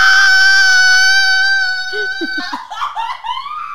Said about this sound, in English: She screamed because she already has an answer.